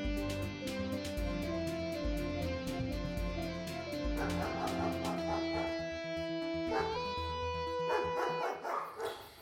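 Two large dogs bark in a rapid, repeated series with occasional whimpers, set against a steady, droning musical bed that swells toward the end. No one speaks.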